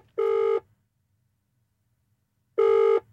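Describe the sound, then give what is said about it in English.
Two bursts of an outgoing-call ringback tone, each about half a second long, separated by a couple of seconds of near silence, heard clearly as if through a phone line. “Let's have a quick ring.”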